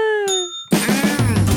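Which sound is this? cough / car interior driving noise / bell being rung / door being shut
bell being rung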